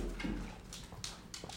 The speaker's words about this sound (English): Sammy, come here. Come here. Come here. This dog. Ruining my show. Ruining Nintendo to the moon. Come on, Sammy. Here she comes.